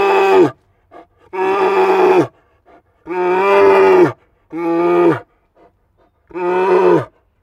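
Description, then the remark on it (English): A voice imitating a grizzly bear's roar, five loud, drawn-out bellowing roars with short pauses between them, with no other sounds around. “And it's a happy bear jumping around like a little baby going, ah, ah, ah. And it's just roaring at you.”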